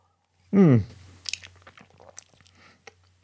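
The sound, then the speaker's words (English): A loud slurp of someone sucking up the last dregs of an extremely lemony drink, followed by a scatter of small wet mouth clicks and swallowing noises. “time for another sip of my extremely lemony dregs.”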